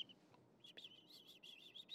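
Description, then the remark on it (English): A rapid run of high, thin chirps made by a person imitating birdsong, repeated in quick succession for about a second and a half, fairly quiet, with no talking over it. “Chirp, chirp, chirp, chirp, chirp, chirp. Those are bird noises. I can make bird noises.”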